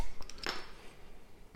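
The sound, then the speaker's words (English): A Pilsner beer bottle cap is pried off with an opener, a few small metallic clicks followed by a sharp pop and a brief hiss of escaping gas, with no talking. “And let's get the top off the Pilsner.”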